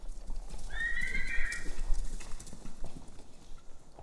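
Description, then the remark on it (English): A horse lets out a single high, wavering whinny lasting about a second, while hooves clip-clop steadily on hard ground beneath it and continue after the call fades. “I just am ever grateful to the horses for the medicine that they bring.”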